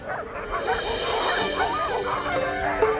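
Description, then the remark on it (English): A team of three sled dogs barks and yips excitedly in an overlapping chorus while pulling a racer around a lake on a winter day in Kaya, Alaska, steady and fairly loud over a busy background for about three seconds. “Tooey Okami is racing around the lake, pulled by his team of three dogs”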